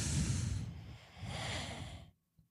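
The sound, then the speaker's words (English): A man who has fallen asleep snoring: a long, rasping, snorting breath followed by a second noisy breath, then silence, with no talking. “You snoring? You asleep?”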